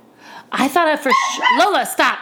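A dog barks and yowls, a quick run of loud, high-pitched, whining barks that rise and fall over about two seconds.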